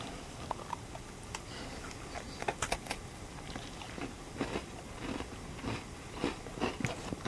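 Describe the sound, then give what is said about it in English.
Crisp crunching of green onion Cheetos being chewed, with repeated sharp crackles in an irregular rhythm over several seconds and no talking. “Yeah, it's like they have green onion Cheetos and. I haven't seen those. They're real crunchy.”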